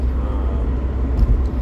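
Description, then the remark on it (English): A steady, loud low-frequency rumble fills the cabin of a moving, very cold car on a windy day of 10 degrees, constant throughout with a couple of brief bumps near the end and no voices. “in a very loud car because it is 10 degrees out and my car is very cold.”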